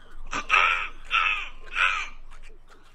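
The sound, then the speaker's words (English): A child's voice imitates a snowy egret call with three harsh, raspy squawks in a steady rhythm, fairly loud, with short pauses between each croaking cry. “Can you imitate your favorite egret sound?”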